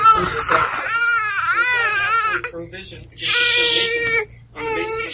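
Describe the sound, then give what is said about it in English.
A baby in a class wails in loud, wavering high-pitched cries, rising and falling in pitch, broken into several bursts with brief gaps between them. “Did you bring a baby to class?”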